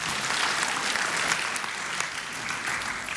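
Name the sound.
audience applause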